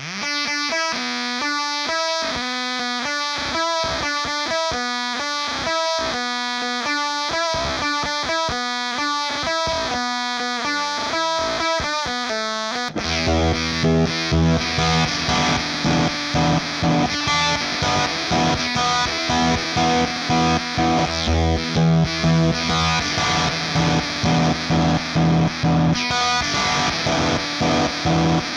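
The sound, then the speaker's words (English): Guitar fuzz noise run through a harmonic jerculator, an Analog Man ADR X20 analog delay and a Chase Bliss CXM 1978: first a pulsing, stuttering run of harmonic-rich tones, then a dense, distorted wall of buzzing noise with a heavy low rumble and repeating echoes. “Create some noise scapes using the harmonic jerculator, an analog man ADR X20 analog delay, and a Chase Bliss CXM 1978.”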